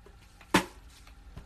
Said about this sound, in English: My apologies for coughing in y'all ear.